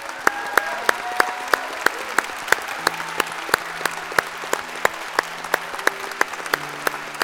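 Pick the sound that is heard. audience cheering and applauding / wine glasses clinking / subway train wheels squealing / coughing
audience cheering and applauding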